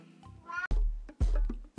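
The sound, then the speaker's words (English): A cat gives a drawn-out, rising meow, followed by loud, muffled low thumps and rustling bursts, with no speech. “I'm going to get off this podcast before the cat drives me mental.”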